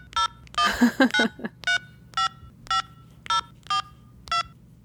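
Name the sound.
phone keypad dialing tones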